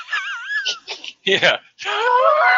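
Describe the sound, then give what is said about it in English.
A person imitates the wheezing laugh of a cartoon dog from a Hanna-Barbera car-racing cartoon: wobbly high-pitched vocal tones, choppy breathy bursts, then a longer raspy, strained wheeze, all fairly loud and lasting a couple of seconds. “The asthmatic dog.”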